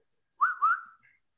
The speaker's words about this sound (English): Okay, how do you whistle someone's name?